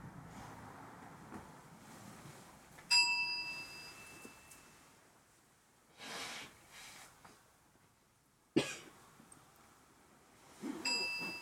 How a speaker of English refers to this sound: Similar to the sound of the bell, each sensation has a beginning, staying for a while, and ending.